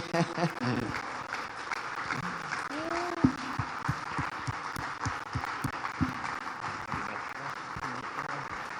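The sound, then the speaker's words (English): A crowd gives Jesus a hand clap of praise, applauding steadily for about nine seconds, a dense, even wash of clapping with a few sharper claps standing out and a brief vocal whoop partway through. “Can we put our hands together? Let's give Jesus a hand clap of praise.”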